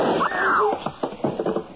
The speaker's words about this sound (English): Nice shooting, Jim. You knocked it right out of his hand.